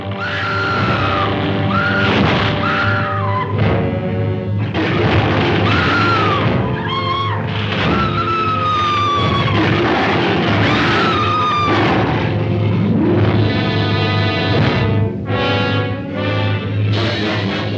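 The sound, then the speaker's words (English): A woman's high screams, Fay Wray screaming in a movie, rise and fall over a loud, dense wall of roaring or sailors shouting, sustained almost without pause from start to finish like an intense film scene. “Roaring or sailors shouting, some variations on Come On Fellas.”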